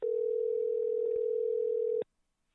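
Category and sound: signal or alarm, outgoing phone call ringing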